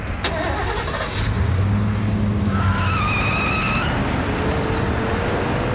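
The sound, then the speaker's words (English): A truck's engine roars loudly as tires squeal and skid, a sustained screech rising over the rumble as it speeds away, continuous with no voices. “They're off.”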